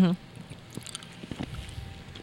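A short vocal sound at the start, then quiet chewing of candy, with soft wet smacks and clicks scattered irregularly over a couple of seconds.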